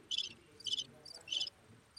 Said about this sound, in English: The crickets? Ooh, this is fun.